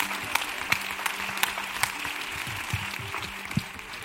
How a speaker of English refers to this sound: For my part, I just want to ask you all to give a big round of applause to all of our panelists. And thank you.